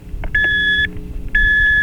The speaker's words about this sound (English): Okay, this is one that's, what, you got a digital alarm clock? Yeah. Okay, can you wake up to the radio as well with this one? No, I can't. I have no choice. So it's just an obnoxious alarm clock for mm-hmm. you?